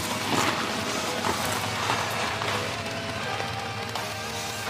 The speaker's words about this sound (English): Clearly driving on some sort of gravel, maybe some mud.